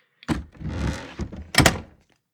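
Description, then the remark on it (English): A door opens as someone comes through it: a solid thunk of the latch, a brief scraping rattle as it swings, then a second pair of sharp knocks, with no voices. “It is going to be at this point that Alita is going to come through the door, because at this point she's like, everybody's over here.”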